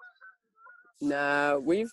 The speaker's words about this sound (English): And the ducks in the background. the geese flying over. No swans.